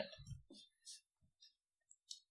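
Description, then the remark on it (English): Four dice are rolled in a tabletop game, clattering across a hard surface in a quick, irregular scatter of sharp clicks and taps, fairly quiet, each rattle settling within about two seconds. “If you want to help him, I'll give him another two, so he can get four dice.”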